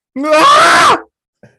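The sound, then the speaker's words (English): A man lets out a single loud, strained scream of frustration at his team's performance the previous day, lasting under a second, pitched and harmonically rich, rising then falling, followed by a brief faint vocal sound. “Which one of us can do the best visceral and angst scream at the state of our performance yesterday?”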